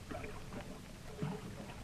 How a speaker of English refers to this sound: has been led to a dark underground passage where the black waters lap ominously around a platform used as a dock, where a long, shallow native boat is awaiting to take them away.